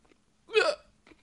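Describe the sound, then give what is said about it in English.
A single sharp hiccup during a Mystery Oreo taste test, a sudden voiced catch rising in pitch then cutting off, followed by a faint breathy sound. “excuse me.”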